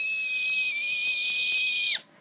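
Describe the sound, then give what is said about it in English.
A loud, sustained high-pitched squealing scream holds one shrill, steady pitch for about two seconds, then cuts off abruptly with a quick downward slide; no talking. “But I prefer not squealing and putting tremors through the earth with my jumping.”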